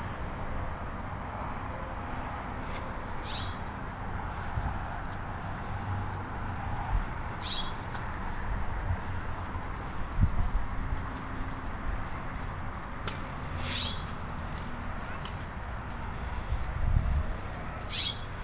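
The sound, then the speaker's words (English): Faint bird calls ring out intermittently over a steady outdoor hiss, a handful of short cries spaced several seconds apart. “But that's not the bird that's making this noise. Could be another blue jay, could be another bird.”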